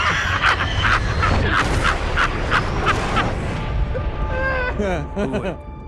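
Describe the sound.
A voice imitates the jets of the film Top Gun: Maverick by mouth, starting with a steady run of rhythmic, breathy roaring bursts, then sliding into rising and falling whooshing pitch sweeps that fade out at the end.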